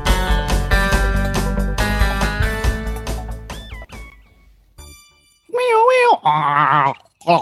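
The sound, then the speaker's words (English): After a few seconds of loud music fade out, a person's voice imitates a turkey gobble: two bursts of warbling, rapidly wobbling pitch, the second a fast choppy gobble. “I gotta work on my turkey God. Sounds. Yeah, it sounds anyway, a little choky.”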